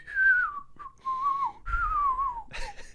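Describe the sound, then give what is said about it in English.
A man on a hike whistles a bouncy circus-style clown juggling tune, the pitch sliding downward in playful phrases over about three seconds, fairly clear with no talking. “He was just whistling that like juggling circus song.”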